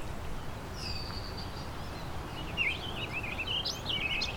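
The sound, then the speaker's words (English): A warbling vireo sings a quick, rambling run of burry notes, preceded by a thin drawn-out whistle, over a steady low rumble of wind, heard from a sheltered patch of pine trees. “There's the warbling vireo again.”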